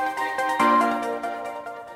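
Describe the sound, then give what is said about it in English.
A short electronic ringtone jingle plays alone: a quick run of bright, bell-like tonal notes with a stronger accented note near the middle, then lighter repeated blips fading out. “I mean, yeah, we got let's our fancy ringtone.”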